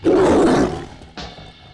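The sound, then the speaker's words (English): A jungle cat in the bathroom of a villa at Caesar's lets out a loud, rumbling roar that fades after about half a second, followed by a shorter, quieter second snarl. No one speaks. “There's a jungle cat in the bathroom!”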